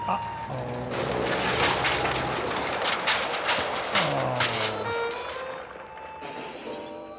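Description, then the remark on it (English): A loud, sustained crash of heavy trucks tumbling down, with rolling bangs, metallic clatter and booms over about seven seconds, and sliding tonal squeals and whines running through the din. “Sounds like a convoy of trucks falling out of the sky and...”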